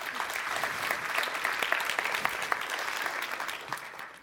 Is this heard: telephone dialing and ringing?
no